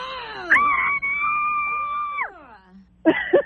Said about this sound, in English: Hi, the last person wouldn't scream with me. Can you just scream with me on the count of three? Oh, yeah, of course. Okay, ready? One, two, three.